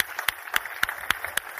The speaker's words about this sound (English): We're just going to just spend 7 or 8 seconds thanking the Lord for the loving people to your left and your right. And I want you just to spend 7 or 8 seconds clapping and thanking the Lord. Come on, right now.